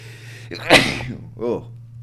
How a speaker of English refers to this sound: Sneeze there a bit.